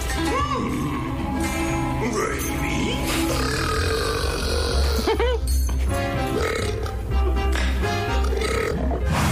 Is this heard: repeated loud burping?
yes